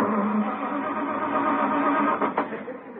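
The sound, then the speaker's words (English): A car engine grinds and whirs steadily as it is cranked in a driveway at night, sputtering briefly near the end without catching and failing to start, with no voices over it. “Won't start.”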